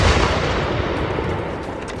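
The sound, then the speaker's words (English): A loud blast from a 110-pound ceremonial cannon roars and rumbles for about two seconds, a dense, deep boom that fades only slightly, with no voices. “I can get behind the cannon because it is a completely ceremonial object”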